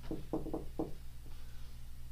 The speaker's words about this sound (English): Couple twists, turns, they take you to a safe house. You knock on the door.